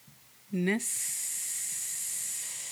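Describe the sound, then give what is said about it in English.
A person makes a short voiced sound, then imitates a snake with a long, steady, sharp hiss that holds fairly loud for about two seconds. “That's what a snake says, by the way, is...”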